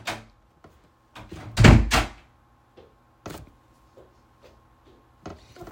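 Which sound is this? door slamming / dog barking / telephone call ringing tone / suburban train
door slamming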